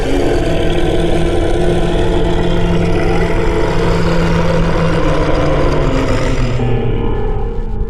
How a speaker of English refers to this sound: And it shakes its head and it looks down at you. And then it lets out this tremendous roar.